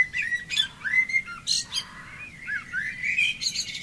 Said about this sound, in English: Bird song. Recording. We used to call it the Dawn Chorus. Thousands of birds, hundreds of birds. You'd hear them.